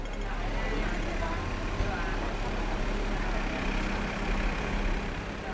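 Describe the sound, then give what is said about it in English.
Dense street traffic of cars, trucks and double-decker buses in the small, winding streets of Central and Kowloon, Hong Kong, rumbles steadily. The heavy low drone of trucks and buses blends into a constant wash of engine and road noise. “Cars, trucks, and double-decker buses plow through the small, windy streets of Central and Kowloon.”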